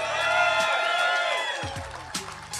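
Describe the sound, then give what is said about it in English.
A crowd at JRM Fan Days cheers and applauds for Dale Earnhardt Jr. steadily for a few seconds, a dense, loud wash of clapping with whoops and shouts rising above it, holding at an even level throughout. “How about a big round of applause and let us hear it for Dale Earnhardt Jr.”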